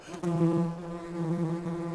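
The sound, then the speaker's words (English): A bee on a flower buzzes steadily, a continuous droning hum with a strong low pitch and layered overtones that wavers slightly in loudness for a couple of seconds. “There's the bee on another flower.”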